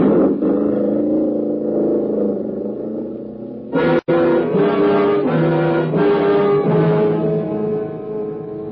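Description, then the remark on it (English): Loud car engines roar and rev continuously, with a sharp break midway before the throaty revving surges back even stronger, as hot rods loaded with youngsters race across the middle of a bridge. “they're right in the middle of the bridge. Ooh. Those hot rods piled up with a bunch of youngsters.”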